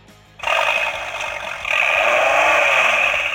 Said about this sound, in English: That sounds like a Viper. It is a Viper.